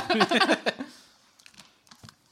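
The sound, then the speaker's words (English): A few light clicks and small plastic clatters of dice being picked up after being poured out onto a lap, soft, following a short burst of talking at the start. “While he picks up all of the dice so that he poured out.”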